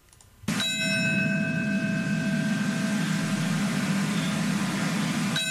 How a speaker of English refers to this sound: The bells ring out at the site where the World Trade Center once stood, just one of many remembrances today on this 9/11.